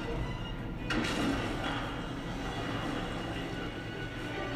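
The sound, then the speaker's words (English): A heavy secret door grinds and rumbles steadily as it slides open, with a sharper scrape near the start and a continuous low mechanical drone throughout, no voices. “Secret door! Beautiful!”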